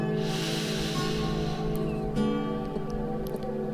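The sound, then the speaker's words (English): A slow, deep inhale in a guided breathing exercise, an airy hiss that swells and then tapers off over a couple of seconds, above a steady low humming drone. “Breathing in.”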